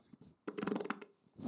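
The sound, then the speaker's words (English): A short, fluttering fart lasting about half a second, buzzy and creaky with a rasping texture. It is fairly quiet and stands alone, followed by a brief softer hiss. “That was a great fucking fart.”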